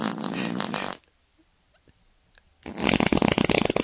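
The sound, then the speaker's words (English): Two loud, raspy farts, each lasting about a second, separated by a short quiet gap with faint rustling; the second burst is louder and more sputtering. “Absence makes my farts grow stronger.”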